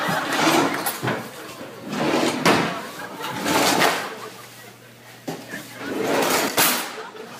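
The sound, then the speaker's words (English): A child pulls and pushes fake, not real, drawers: a series of short scraping, rattling slides at an uneven pace, moderately loud, about six bursts over several seconds. “Those aren't real drawers, buddy.”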